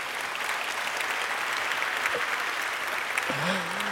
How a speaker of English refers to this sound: And thanks to my wife for starting that clap for them. They certainly deserve it.